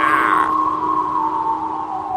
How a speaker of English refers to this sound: As the wind blew, Thomas heard the whistling and wailing sound again, and he began to feel scared.